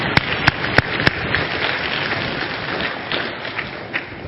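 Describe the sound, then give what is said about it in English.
An audience breaks into applause, a few sharp, distinct claps at first, then a dense, steady wash of clapping that holds at an even level throughout. “And I just think that's worthy of applause.”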